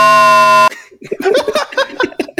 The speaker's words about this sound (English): Here's what our intro could be. We can do the fucking local access alert thing.